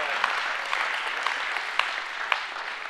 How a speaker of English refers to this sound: Give the Lord a hand clap if you believe that.